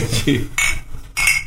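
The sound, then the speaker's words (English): Glasses clink together in a toast, a few bright, ringing taps spaced roughly half a second apart, with a sharp metallic sparkle and a short shimmer after each. “Let's cheers.”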